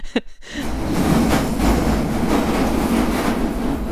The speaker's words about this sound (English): It's rush hour in London. A lot of people commuting, coming down the escalator, ready to go home. I'm walking up it.